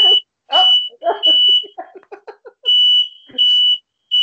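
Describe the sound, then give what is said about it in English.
A smoke detector alarm blares in loud, piercing high-pitched beeps, about five of them in an uneven pattern, while people talk and react over and between the shrill tones, as someone cooks downstairs in a home. “There, well, you know, I got a smoke detector in my bedroom, just like you're supposed to.”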